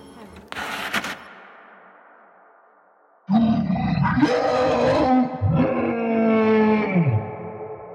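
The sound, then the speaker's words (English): A sharp, crashing burst echoes away into silence, then a monstrous creature somewhere out of sight lets out a loud, drawn-out roaring howl that rises and falls in pitch, powerful, with no talking. “From somewhere out of sight, the monster let out an almighty howl.”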